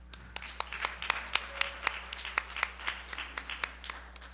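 A church audience claps in a steady, rhythmic beat after the music ministry, applauding the sound booth operator, sharp hand strikes repeating roughly every quarter second over a faint hum, with no talking.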